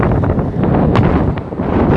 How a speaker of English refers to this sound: Oh, it's a tornado. It's gonna take me away. It's really windy and cold because it's like really cold air.